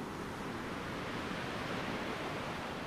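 A steady, broad rush of ocean surf on a beach, a continuous hissing wash of waves at an even loudness with no distinct individual breakers and no voices.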